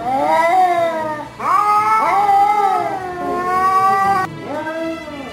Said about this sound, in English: Do you sound more like a wet cat?